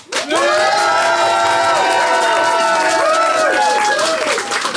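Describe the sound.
A live Phoenix audience breaks into loud, sustained applause and cheering, with many voices shouting and whooping over the clapping throughout.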